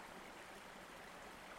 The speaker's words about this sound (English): The Fountain of Reincarnation was a beautiful stone fountain, the large pool of water at the base, and two smaller tiers on top, with water gently trickling down.